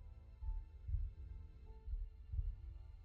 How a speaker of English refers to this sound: as you're watching this transpire and seeing this heart beating within him, you see these tubes that come out and go throughout the body.